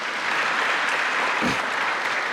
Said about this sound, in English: in the next couple of days, several in our music ministry will be traveling to New York City, and they will be singing and performing at Carnegie Hall. And so, yeah, pretty good. Let's give a hand clap of praise for that.